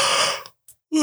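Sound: person yawning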